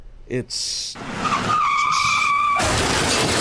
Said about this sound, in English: Rainy and snowy, icy, car going off the road.